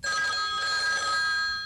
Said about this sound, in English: Then the phone rings.